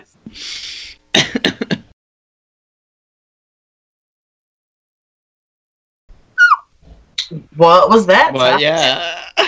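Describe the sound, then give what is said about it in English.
Breathy huffs and a short throaty burst, then a pause, then a squeaky yawn with a wavering, stretched-out pitch that trails off near the end. “That was me yawning.”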